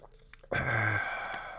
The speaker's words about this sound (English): Okay, let me take a drink.